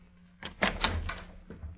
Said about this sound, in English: he knocked at the door of Major Hamilton's office